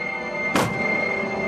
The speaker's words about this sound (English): The gunshot doesn't sound like gunfire. It sounds like someone kicking the side of a building or kicking a piece of furniture, and the energy level is quite low.